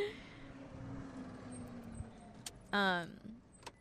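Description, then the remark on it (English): A loud car rumbles past, its engine noise steady and broad, with a brief high tonal squeal breaking through near the end. “Oh, sorry, this really loud car is passing by.”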